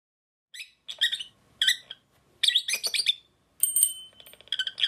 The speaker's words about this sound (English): it's Harlow, a blue lovebird, that chirps for attention in her study.